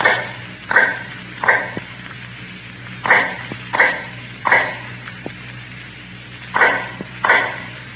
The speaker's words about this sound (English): Now in the North Tower, cell number 105 is heard all day, a low, hammering sound. The sound of an old man making shoes in the dark.